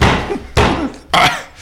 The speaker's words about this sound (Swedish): Man hostar ut lite. Dunkar han i ryggen så.